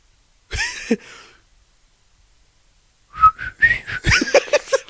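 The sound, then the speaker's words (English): Breathy, airy whistling from a person trying to mimic chirpy robot beeps: a short burst, a pause, then a longer run of quick warbling, sliding tones, fairly loud. “You're not even whistling. You're just blowing air out of your mouth hole.”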